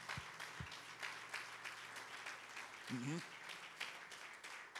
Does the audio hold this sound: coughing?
no